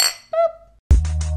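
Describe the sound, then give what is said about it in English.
Glasses clink together in a quick toast, a bright ringing chime followed by a second softer ring that fades, before a louder, fuller burst of sound cuts in. “Cheers. Cheers.”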